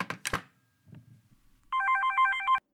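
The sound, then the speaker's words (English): A couple of sharp clunks, then after a brief quiet pause a telephone starts ringing: one loud burst of warbling electronic trilling lasting about a second, with no one speaking. “The phone rings.”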